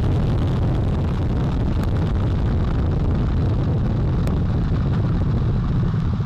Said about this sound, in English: All four RS-25 engines on the core stage and two solid rocket boosters now propelling the vehicle at 128 miles per hour.